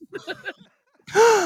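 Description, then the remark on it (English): A few short, breathy laugh-like bursts, a brief pause, then a person's sudden sharp gasp of shock at a statement, loud, with a voiced rising-and-falling edge as it trails off. “I am gasping at that statement. You heard me gasp.”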